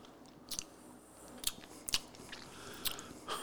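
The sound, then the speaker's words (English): Someone chews a hard Ricola lemon mint sugar-free cough drop, making about five sharp, crisp crunching clicks at irregular intervals over a soft, quiet background with no talking. “there's cough drops getting in the way.”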